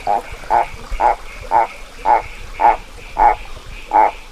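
A frog calling from under giant boulders in the rainforest gives a series of eight short, sharp barking calls at a steady rhythm, each one sounding much like a small dog's bark, clear over a faint background.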